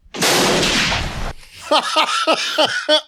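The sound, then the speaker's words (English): A single loud shotgun blast in a played video bursts out with a rough, roaring tail that lasts about a second, followed by a string of short, rising voiced yelps. “It's a badass shotgun though.”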